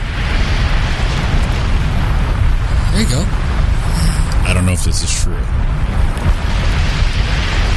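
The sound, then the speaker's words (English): A volcano eruption sound effect of a volcano erupting on the Big Island of Hawaii: a loud, steady low roar throughout, with a few sharper crackling bursts midway. A person speaks briefly over the rumble. “It says from volcano the big erupting.”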